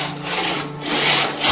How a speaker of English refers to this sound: In October of 1989, after sawing off the barrels himself, Randy Weaver sells the guns to Magisano.